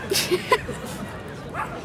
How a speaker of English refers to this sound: to be fair, that's five of those Pomeranian dogs that was always going, oh, they're not starting to bark now. I can handle the pigeons, but I cannot handle these dogs.